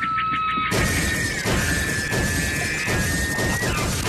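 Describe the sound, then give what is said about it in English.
A moose crashes through a large glass window of a community room at a school in Saskatoon: a sudden loud smash under a second in, followed by several seconds of continuous noisy clattering and shattering, with a steady high whine running underneath. “Suddenly, the moose ran through a large glass window in a community room and eventually slumped to the ground in shock.”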